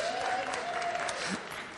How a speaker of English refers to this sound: Round of applause for my beautiful assistant.